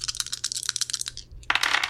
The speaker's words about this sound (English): Let's roll some dice. Woo! Cool. Okay, so I've got 3.